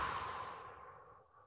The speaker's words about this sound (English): And then the second step is just going to be a nice breath. You can do a 5-second inhalation and a full exhalation. The time doesn't matter as much, but we want to go in through the nose and out through the mouth.